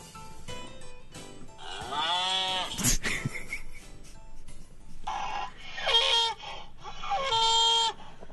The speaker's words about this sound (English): I don't like that one. It sounds like a deflating donkey. No, that's not good.